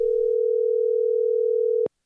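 A steady, loud telephone dial tone, as a radio book show connects a phone interview with novelist Hwang Jung-eun, hums continuously for nearly two seconds, then cuts off abruptly with a brief click, followed by near silence.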